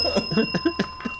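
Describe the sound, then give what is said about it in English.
A small bell rings rapidly over and over, its bright metallic tone sustained beneath quick repeated strikes, like a bicycle bell being flicked insistently. “Thank you for giving Mike that bell.”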